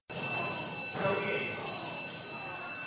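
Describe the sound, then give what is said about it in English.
A wrestling ring bell clangs several times in quick succession to start match number four, the ECWA World Heavyweight Championship rematch between Joey Ace and Casey Navarro, its bright metallic ringing sustained over a loud, noisy crowd, with voices talking underneath. “Bell's underway. Here we go.”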